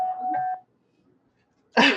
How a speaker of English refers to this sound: my cat's playing the piano. I was going to say, did the cat just jump on the piano?